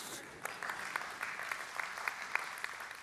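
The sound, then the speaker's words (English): A crowd applauds steadily, a dense patter of many hands clapping at moderate volume with a few sharper claps standing out, no voices heard over it. “You can clap for that.”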